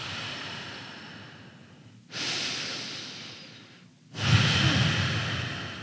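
Slow ocean breathing, a yogic breath, drawn through a constricted throat: three long, breathy whooshes, each a few seconds, with a hushed, wave-like rasp that swells and fades. No talking.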